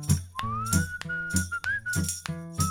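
A person whistles a tune, the clear whistled notes sliding gently up and holding, over a steady rhythmic beat of sharp percussive hits with low background music.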